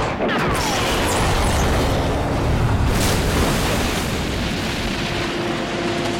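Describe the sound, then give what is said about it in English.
A big movie-style explosion roars out, a dense, loud blast of rumbling noise that stays thick and sustained for several seconds, with crackling debris layered over a deep low boom. “I don't know if you want to jump the gun with this, but, you know, I think he's following the same how to treat an explosion formula that we're going to come across again here.”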